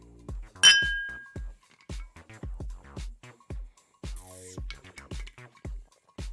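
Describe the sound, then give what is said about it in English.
A single bright clink of glasses touching in a toast rings out near the start and fades quickly, followed by people talking. “So I drink to that. Cheers. Cheers.”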